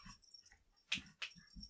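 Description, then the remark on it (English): Dogs, one of them named Odie, whimpering and growling in short, uneven bursts, with a couple of sharper noisy outbursts in the middle; fairly quiet overall, with no one speaking. “Let me yell at these dogs.”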